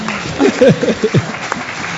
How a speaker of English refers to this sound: Round of applause for that.